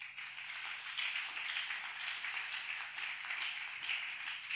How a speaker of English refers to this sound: Are you clapping?